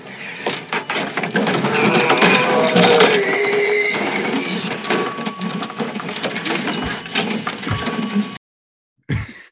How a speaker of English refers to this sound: Did he rip the phone out of the wall? Yeah, he rips the phone out. It's a phone booth.